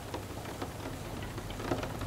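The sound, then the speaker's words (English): Steady rain falls on an urban street under the orange glow of street lamps in a soft, continuous hiss, with scattered drops pattering and dripping from a great height onto hard surfaces. No voices, just the even wash of rainfall throughout. “See the fuzz of rain just beneath the orange glow of the street lamps, dripping from a great height.”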